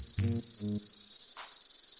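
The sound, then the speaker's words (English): A dense chorus of cicadas around a tent at night drones steadily throughout, a high, unbroken buzz filling the night air, with two short low-pitched calls briefly sounding near the start. “And I'm hearing the cicadas, you know, this chorus of cicadas around me.”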